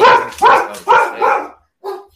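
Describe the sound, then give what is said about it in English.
A dog barks loudly, four quick barks in a row, then a short pause before one final bark. “Dogs are out, baby. Yo, the dogs.”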